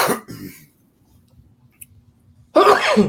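A sharp, loud sneeze bursts out near the end, after a brief breathy huff at the start and a quiet pause with faint background hum.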